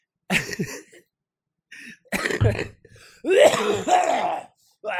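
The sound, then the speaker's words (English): A loud series of rough, phlegmy throat clearings and hacking coughs from mucus in the throat, coming in several raspy bursts separated by short pauses, with no talking. “There's so much mucus in my throat.”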